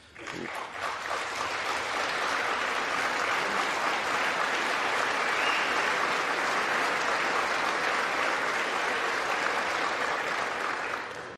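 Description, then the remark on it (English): Sustained applause from a large crowd in the House chamber after remarks by the Speaker of the House, with little clapping from Democrats; a dense, steady wash of clapping that starts abruptly and holds at an even, loud level for about eleven seconds with no voices standing out. “Just a note, not a lot of clapping from Democrats on that last part.”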